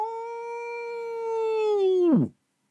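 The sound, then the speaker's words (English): A single long, steady howl sung by a human voice imitating a wolf, held for about two seconds before sliding sharply down in pitch and cutting off. Fairly loud, with no other sounds. “Not far away from that field, there was a dark wood, and in that dark wood there lived a dark wolf, a big wolf.”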